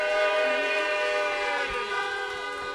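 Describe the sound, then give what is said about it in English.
Several car horns honk together in a loud, sustained, overlapping chorus that holds steady for a few seconds, with faint crowd noise underneath, sounded to welcome new members of a church audience. “Brothers and sisters, please with a honk, a round of applause, whatever you've got, let's welcome our new members.”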